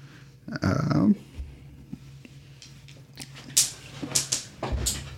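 Dice drop onto a table, a quick series of small hard clicks and rattles clustered over about two seconds, following a brief whining vocal sound near the start.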